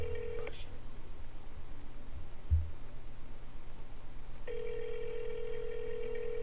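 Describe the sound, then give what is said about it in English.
A phone call to a Subway sandwich shop rings on the other end without being answered: a steady, buzzy ringback tone briefly at the start, then a long pause, then another long ring, over a faint low hum with no talking. “All right, we're calling the way of the sub.”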